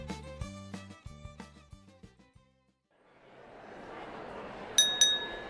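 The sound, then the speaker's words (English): A short tinkling musical phrase fades out, then a bed of crowd-like noise rises and two bright glass clinks ring out near the end, close together, as in a toast. “Join me for a toast. Raise your glass”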